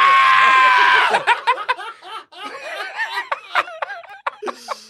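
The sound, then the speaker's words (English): People bleat like goats in a loud, wavering vocal imitation, the opening call stretched out before breaking into choppy, quavering bleats mixed with laughter and chatter, lively. “Give me some goats.”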